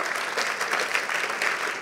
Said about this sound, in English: You don't clap like you are Christians.